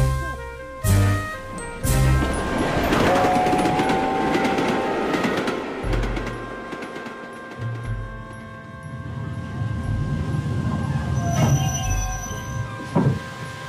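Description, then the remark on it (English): A steam train rolls along the rails with a steady heavy rumble, rhythmic clanking and occasional metallic squeals, loud throughout, with no voices. “We must hire a special train.”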